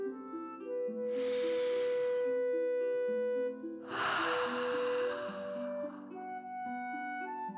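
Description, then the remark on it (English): Two long, airy breaths drawn in through the nose and pushed out through the mouth over a steady, soft musical drone, each a broad hissing whoosh, the second more forceful, with no talking. “Breathing in through your nose and breathing fire out of your mouth. Again, deep breath in and out.”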